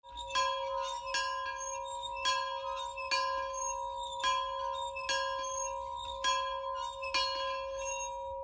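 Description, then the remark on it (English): A plantation bell from the southern United States clangs about eight times at a steady, roughly one-second pace. Each strike rings on and blends into the next, heard alone. “And that last bell's a plantation bell from the southern states of the US.”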